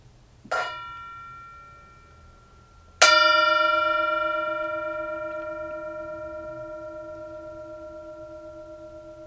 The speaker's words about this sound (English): As always, we have the mindfulness bell. You're invited into mindfulness, invited to enjoy the sound of the bell, to enjoy this moment, as we're about to enter into Jeremiah.